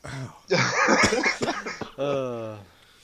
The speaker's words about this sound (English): Cough there was just perfectly timed. Yeah, I have fallen ill. Sorry.